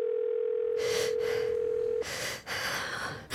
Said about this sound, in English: All she has to do is pull up speed dial and click the contact labeled Mom. The rotary phone in the old farmhouse starts ringing.